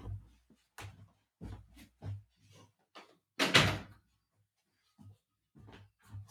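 A door being closed: a series of soft knocks and handle rattles, one louder thud as it shuts, then a few quiet clicks. No one speaks.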